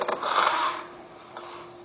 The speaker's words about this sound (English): I will take a minute because I've been crying. So I have to blow my nose.